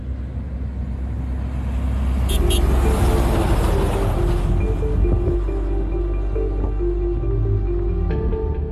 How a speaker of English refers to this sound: It started by chance on a potholed road near Hanover in the Karoo. When the fourth manganese truck in as many minutes thundered past us, we grasped the true extent of our viewers' complaints.